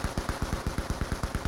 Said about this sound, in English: The last remaining guard was hidden behind a rock and was still firing at them.